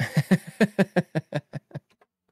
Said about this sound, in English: Ask the thing to give us a Mitch Hedberg joke. It's just H-E-D. Yeah, there you go. Don't fucking expose me, dude. They can't see what I'm typing.